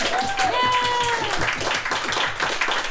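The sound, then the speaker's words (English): An audience applauds the evening's artists steadily for about three seconds, a dense wash of clapping mixed with cheering voices, with a high whistle or shout rising over it near the start. “So I want to give a round of applause to our artists tonight.”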